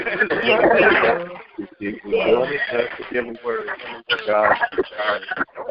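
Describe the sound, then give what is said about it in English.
Narrow, tinny speech over a telephone line, with voices overlapping in a hollow, doubled way as if an echo repeats on the call, continuous and moderately loud. “You got an echo on the line.”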